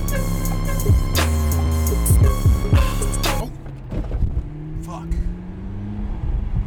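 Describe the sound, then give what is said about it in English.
A McLaren sports car engine roars and revs loudly as it speeds, with music layered over it, then a sudden jolt as it hits a large pothole cuts the sound down to a lower, rumbling drive. “The song ends with Tyler hitting a large pothole.”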